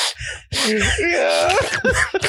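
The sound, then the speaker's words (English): A voice imitates someone gasping for air, with strained, choked breaths and drawn-out wheezing moans over about two seconds, fairly loud. “Gasping for air, nigga, like this, like.”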